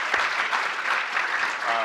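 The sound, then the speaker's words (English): An audience applauds steadily after Alton Brown mentions relaunching his show Good Eats, a dense wash of clapping that holds at an even level throughout, with a voice starting to come through at the very end. “That's why they have a round of applause, yeah.”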